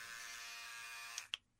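Electric clippers buzz steadily with a bright, high-pitched hum while shaving the hair around and inside the right ear, then cut off with a couple of short clicks as the motor stops.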